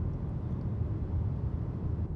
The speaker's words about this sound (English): I'm going to come to a stop down here at the stop sign, and maybe you can hear the range extender. There's no cars around me. This is exciting podcasting right here, folks. You hear it? Sounds like a lawnmower a little bit.